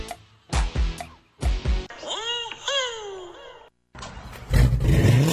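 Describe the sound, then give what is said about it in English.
A car engine with a loud Carnage custom exhaust from Troy's Muffler revs up: a few sharp throttle blips, then longer rising and falling revs, ending in a rough, rumbling roar. “Man, that car sounds good.”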